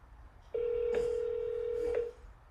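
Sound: telephone dialing and ringing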